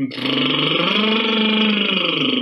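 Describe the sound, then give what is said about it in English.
A single sustained lip trill, done as a singing warm-up exercise: a loud, fluttering voiced buzz held for about two seconds, its pitch sagging slightly in the middle and then lifting again. No talking. “Just like buzzing my lips together”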